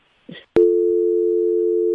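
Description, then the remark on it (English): A brief muffled rustle and a sharp click as a phone call drops, then a loud, steady busy-signal tone from the phone line drones on unbroken to the end. “we're going to go ahead and talk until Annie gets her back on the phone with us”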